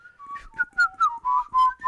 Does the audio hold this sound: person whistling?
yes